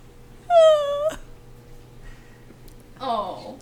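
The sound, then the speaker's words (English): A dog named Patty whines in a high, drawn-out cry that falls slightly in pitch, then lets out a second, shorter whimper a couple of seconds later, wanting attention and jealous of the cat. “Yeah, now we have Patty's over here like, someone give me attention.”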